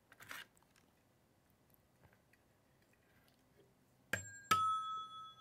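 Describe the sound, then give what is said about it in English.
A doorbell chime rings out a clear two-note ding-dong near the end, its bright tones lingering and ringing on after some faint handling noises earlier. “Nice bells, huh? Bing bong.”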